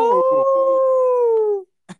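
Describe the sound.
A person mimics a wolf howl with one loud, drawn-out wavering note that slowly sinks in pitch and cuts off, followed by a brief soft tap.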